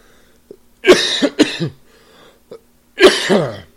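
A man has a loud allergy coughing fit: several harsh, hacking coughs in quick succession with short gasping breaths between, ending in a final forceful double cough.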